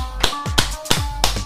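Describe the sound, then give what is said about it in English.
A quick run of five sharp hand claps, evenly spaced and crisp, counted out, with no voices over them. “You got to clap your hands five times because I'm counting.”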